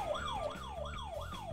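A game show buzzer, rung by a contestant in a multiple-choice quiz game, goes off as a siren-like electronic wail, sweeping up and down in pitch about four times in quick, steady cycles, loud and with no talking over it.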